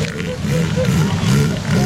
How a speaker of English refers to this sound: You're currently listening to Elephant Seal Mating on the Kiss Morning Freak Show